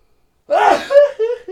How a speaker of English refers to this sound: You sneeze like …. That was so weird. That's the …. I did it on purpose.